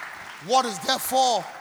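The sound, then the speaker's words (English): Scattered audience clapping mixed with voices calling out in rising and falling tones, forming three short swells of crowd noise over about a second and a half. “You're clapping.”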